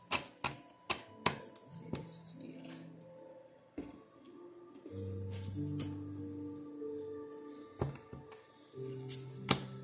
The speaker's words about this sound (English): I'm shuffling the jar cards right now.